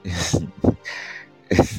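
A person sneezes in sharp, noisy bursts, with a breathy hiss between them before a final forceful burst. No one speaks.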